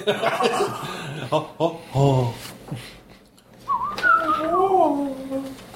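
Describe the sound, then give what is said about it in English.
After a few chuckles and voiced sounds, someone whistles a wavering, breathy melody, mimicking a faint folksy flute tune for a couple of seconds. “Like wind, like whistling, kind of through it.”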